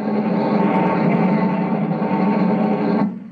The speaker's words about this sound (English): Listen. You hear that? A buzzing sound. That's one of the new rocket bombs. Coming this way, too.